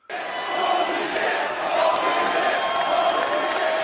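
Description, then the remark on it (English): A packed wrestling arena crowd roars and cheers wildly at fever pitch before the opening bell, in a sustained, dense wall of noise, with scattered shouts and whistles rising above the steady din. “Before the bell, Corey Graves does an amazing job of building up Nakamura, and the crowd are already at fever pitch.”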